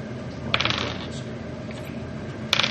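A handful of dice clatter across a hard tabletop in a busy rattling burst, then settle, followed moments later by a second short clattering roll.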